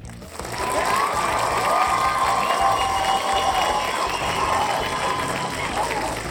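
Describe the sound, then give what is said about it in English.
A studio audience applauds and cheers steadily, a dense wash of clapping with whoops and shouts rising over it, sustained at a fairly loud level throughout. “And then also before we move on any further, I'd like to welcome in our studio audience.”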